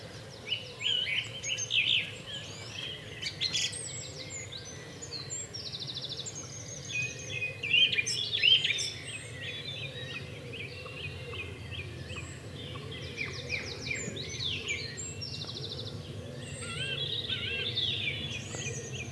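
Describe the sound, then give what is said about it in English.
A song thrush in a big old ash tree sings loud, varied phrases of bright whistles and chirps, repeating short motifs, with other birds calling and a steady low rumble of wind beneath. “There's a song thrush in a lovely big old ash tree.”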